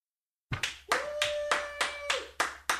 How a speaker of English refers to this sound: Stop clapping.